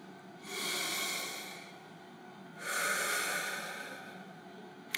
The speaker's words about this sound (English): Let's breathe. Allow your breathing to make you more aware of your consciousness.